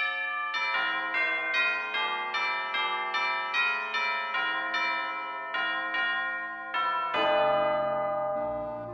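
Bells ring out a steady melody, one clear note after another with rich, lingering overtones, loud, ending on a fuller, heavier chord. No voices are heard.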